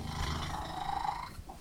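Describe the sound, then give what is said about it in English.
A female cat purrs loudly, a continuous rumbling drone with a rough, growl-like texture that holds steady throughout, with no voices. “And she purrs. In the household, they call that purr Rita's roar.”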